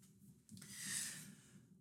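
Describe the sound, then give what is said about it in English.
A voice imitates a single drawn-out snore of a sleeping person, a raspy breath with a low fluttering rumble that swells in the middle and then trails off. “Thalia is asleep, and you just hear the snoring”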